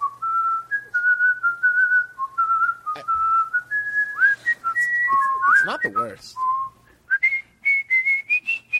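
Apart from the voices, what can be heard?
person whistling a tune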